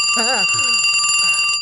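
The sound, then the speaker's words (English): A telephone bell rings in one continuous, rapid metallic trill, loud and steady throughout, with a brief wavering vocal sound and a few low murmurs under it early on. “Oh, dear God, the phone scared the hell out of me.”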